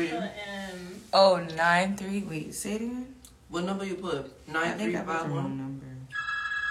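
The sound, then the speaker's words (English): People talk excitedly for several seconds, then a steady electronic telephone ring tone starts abruptly at the very end, clear and fairly loud, as a phone call to someone is being placed. “I tried to call him.”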